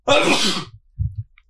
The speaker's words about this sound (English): Wait, I'm about to sneeze.